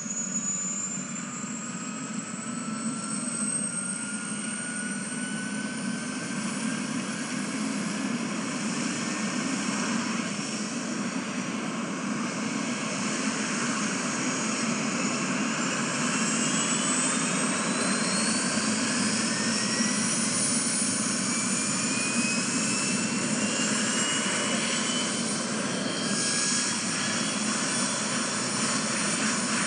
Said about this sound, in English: Then the helicopter actually took off, and I got some audio of that as well as just a short clip here, and as well as some stuff inside the cockpit, just kind of give you an idea.